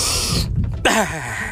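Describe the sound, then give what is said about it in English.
A voice imitates a hard nasal sniff of snorting an eight ball of cocaine: a sharp, hissing rush of air lasting under half a second, a brief pause, then a strained, wavering vocal groan. “As soon as you sniff the eight ball, that's the sound you got to make.”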